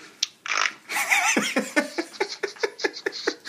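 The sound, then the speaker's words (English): A short, raspy fart noise sputters out, quickly followed by a run of rhythmic, breathy laughter pulsing in quick bursts. “Why are farts funny?”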